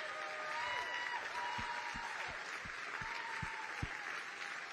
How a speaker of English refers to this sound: How about a round of applause for our veterans?